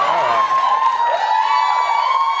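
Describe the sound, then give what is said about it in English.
A studio audience cheers loudly and steadily as Jesse Williams of Grey's Anatomy is welcomed onto the show, a dense wash of many voices with high whoops and shouts rising out of the roar, with no pause or break. “What a crowd.”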